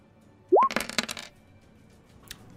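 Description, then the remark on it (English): Dice clatter across a hard tabletop in a quick burst of sharp, rattling clicks lasting under a second, then settle, followed by one faint click. Fairly loud, with no talking. “But go ahead and roll.”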